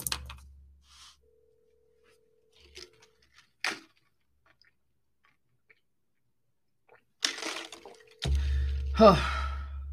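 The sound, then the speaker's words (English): A phone line rings out with no answer, two faint steady ringback tones separated by a long gap, with soft breaths and clicks and a burst of rumbling noise at the end. “Please pick up the phone, please.”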